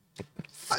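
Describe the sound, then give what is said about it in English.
A single short sneeze, fairly soft, with a quick intake of breath before a hissy burst of air. “Bless you.”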